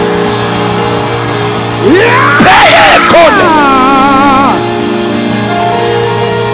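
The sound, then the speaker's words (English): A crowd of voices erupts into loud screaming and shouting for about three seconds, rising sharply over a steady background hum before fading back down. “Come on, scream!”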